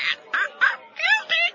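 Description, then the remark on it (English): A white cockatoo mimics human speech, saying the word milky, in a raspy, strained voice, producing five short word-like syllables in quick succession, fairly loud. “The white cockatoo has just mentioned the word milky.”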